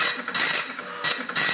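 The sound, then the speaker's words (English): A dot matrix printer buzzes in rapid bursts, its harsh, screechy print-head passes repeating a few times with brief pauses between lines, fairly loud with no voices. “That's the dot matrix printer.”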